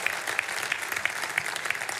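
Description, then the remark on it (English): An audience at Kingsgate claps and cheers together to welcome people who joined in the last three to four years, a dense, steady wash of applause, with brighter accents popping out at a regular beat and faint cheering mixed in. No one speaks over it. “Why don't you give me a big wave and a cheer if you've been here and come from the last 3 to 4 years.”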